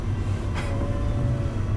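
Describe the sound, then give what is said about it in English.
A steady low rumble of a packed subway train in motion, heard from inside the train, with a faint whining tone and a brief hiss of air partway through. No one speaks. “Do you think when clown cars take the subway, when clowns take the subway, they like really pack in?”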